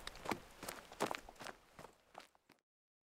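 Quick, light footsteps trot along in an even rhythm, about eight crisp steps over a couple of seconds, fading slightly before stopping abruptly into silence.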